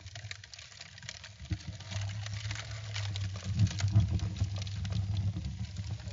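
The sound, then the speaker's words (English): A fire just lit with paper in a fireplace crackles steadily, with irregular sharp pops and snaps scattered over a continuous low rumble. No one speaks. “You know, I think we do have the beginnings of a full fire going. Let's hear it.”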